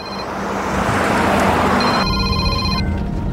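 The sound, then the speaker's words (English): A phone rings on an outgoing call as a woman on the road in a car calls her mother, its tonal ringback repeating over a steady rumble of road and car noise, fairly loud throughout. “So she decides to give her mom a call.”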